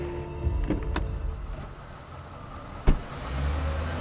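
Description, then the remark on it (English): A car rumbles steadily as it is driven across town, with a low engine drone and a couple of sharp clicks or thumps, one near the start and a louder one toward the end. No one speaks. “she hopped into Viggo Rasmussen's car”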